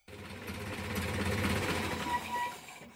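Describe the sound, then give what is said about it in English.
A film projector reel runs with a steady, rapid mechanical clatter and low whir for a few seconds, then cuts off abruptly at the end. No one speaks. “And just like that, the film reel stops playing in my head.”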